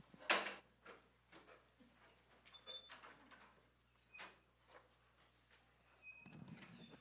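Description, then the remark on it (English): Scattered knocks, scrapes and clatters of chairs and tables as people sit down after a scripture reading, with a sharp bang near the start and several thuds spread throughout, over a low steady hum. “I can hear we're still getting used to those chairs and tables.”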